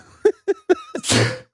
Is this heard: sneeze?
yes